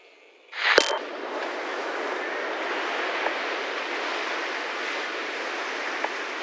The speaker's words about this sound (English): Through his frequency, I heard what I knew was a beach. The waves coming and going, the breeze deafening a microphone, classic reggaeton in the distance.